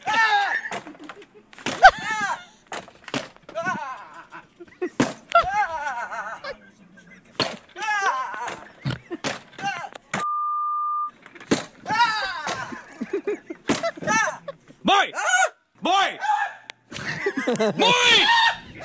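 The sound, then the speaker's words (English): An office door is kicked open and bangs against a wall, then loud, repeated screaming and shrieking voices with some laughter, broken by a brief steady beep partway through. “The sound of the door opening, hitting the wall, and … screaming.”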